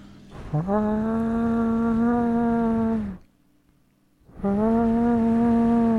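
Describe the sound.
A voice imitates a harsh ringing from a bedroom phone, not connected to the phone line, in the middle of the night: two long, steady, buzzy drones at a low-mid pitch, the first about two and a half seconds, then a brief silence before the second.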